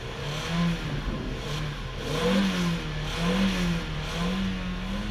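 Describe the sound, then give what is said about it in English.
The heavy engine of a large U-Haul rental truck revs and accelerates as the truck races off a ferry ramp, its low drone rising and falling in pitch over several seconds, with a steady rumble underneath and no voices. “When the ramp came down, the truck raced off.”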